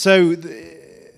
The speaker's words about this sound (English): Gasps from a Guardian advert from 1986.